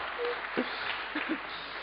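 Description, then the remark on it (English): An audience gives itself a round of applause, clapping together in a steady, dense, muted patter, with a few brief voices or calls rising faintly above the clapping. “Give yourselves a big hand, a round of applause.”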